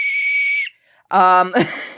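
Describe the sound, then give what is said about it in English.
A loud, piercing safety whistle blast, from a whistle attached to a desk knife used for opening packages, holds steady for about half a second and cuts off; after a short pause, a brief buzzy vocal burst follows. “It's also got a rape whistle on it.”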